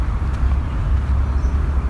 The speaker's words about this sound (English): The other side of the water are highways, train lines, so it's a little noisy here.